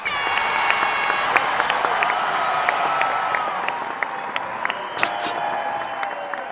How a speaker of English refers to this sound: Pause for applause.